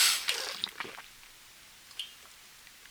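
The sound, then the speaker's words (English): Someone sips water, making wet, squishy mouth noises and small clicks, then a quiet pause before a sharp, abrupt smack at the very end. “Hold on, I have to wash this filth down with a little bit of water.”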